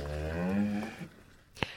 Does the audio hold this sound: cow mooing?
yes